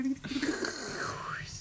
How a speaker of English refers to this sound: This is probably coming up on the mic. Pouring Red Bull.